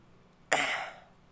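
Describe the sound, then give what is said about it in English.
A single short throat clearing, fairly loud, starting abruptly and fading over about half a second, with quiet room tone before and after and no talking. “Had to clear it.”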